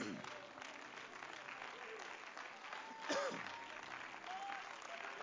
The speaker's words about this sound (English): Would you clap your hands with me?